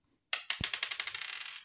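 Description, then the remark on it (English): Dice clatter across a table as damage is rolled in a game: a sharp first hit, then a dozen or so bright clicks coming faster and softer as they skitter and settle, with no voices. “All right, roll me damage.”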